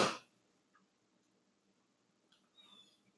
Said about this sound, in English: Wow, that's the phlegmiest sniffle of all time. No, it wasn't phlegmy. It was very clear.